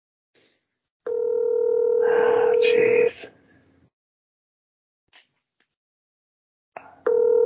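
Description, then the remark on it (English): An outgoing phone call's ringback tone, calling a person who rarely answers their phone at about 9 o'clock: a steady electronic tone that sounds for about two seconds, goes quiet for several seconds, then starts again. A voice briefly mutters over the first ring. “Like, do people just not want to talk to me on the phone?”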